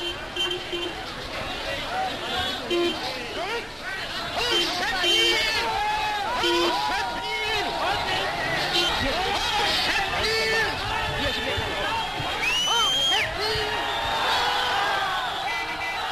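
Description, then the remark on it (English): An archival recording of a large crowd in Berlin greeting Charlie Chaplin, roaring in a dense, continuous hubbub of overlapping voices, shouts and cheers, with whistles and excited calls rising above a steady loud din for the whole stretch. “In Berlin, Charlie was greeted with massive crowds, and thanks to the sound revolution, we can actually hear what it was like.”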